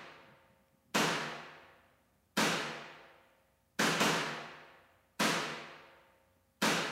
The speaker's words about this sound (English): The other thing I added is a separate sample, a mono reverb for the snare. Another room mic sample. Sounds kind of like a gunshot.